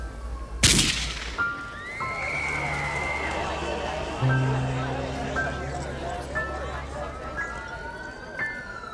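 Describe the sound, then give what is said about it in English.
A single sharp, loud gunshot cracks near the start, standing out against a busy, noisy scene with wavering siren-like tones and indistinct voices continuing in the background. The shot rings out at 6 p.m. while a man stands on a balcony above a parking lot. “Then a gunshot rang out.”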